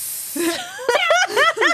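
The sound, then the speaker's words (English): A person makes a breathy, sustained hiss lasting under a second, followed by a quick run of voiced, pitch-sliding vocal sounds. “I don't know why I'm hissing.”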